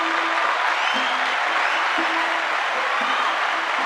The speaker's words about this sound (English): Let's give Stephen a round of applause.